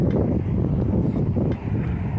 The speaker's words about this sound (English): Now, with bunches of wind and car sounds, let's do this.